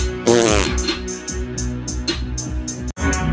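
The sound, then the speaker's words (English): A loud, buzzy raspberry blown with the lips imitates a fart in one quick, wobbling burst, followed by a steady rhythmic backing pattern with no talking. “On my leather couch, he farted.”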